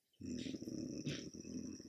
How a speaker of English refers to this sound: Dog. I'm so sorry if your eardrums are a bit too excited.